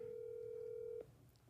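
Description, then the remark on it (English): A phone call to a grandmother rings over speakerphone: one steady, fairly loud ringback tone lasting about a second, then it cuts off, leaving a low background hum. No one speaks. “But so I'll call my grandma.”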